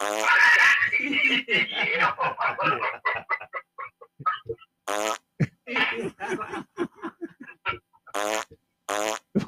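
A loud, sputtering fart sound effect with rapid buzzy pulses, followed by bursts of laughter and snickering, with more short fart blasts mixed in.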